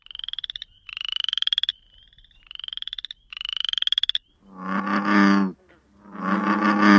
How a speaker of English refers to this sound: Now, last but certainly not least, this show is brought to you by this week's animal ambassador, the frog.